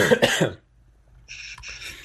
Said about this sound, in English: Do you need to take a minute? Just a second. Water went down the wrong pipe.